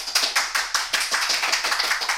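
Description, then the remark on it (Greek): An audience applauds with dense, overlapping hand claps forming a steady, bright crackle that stays fairly even in loudness throughout, with no voices on top. “Χειροκροτήματα.”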